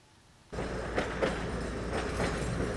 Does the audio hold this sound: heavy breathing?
no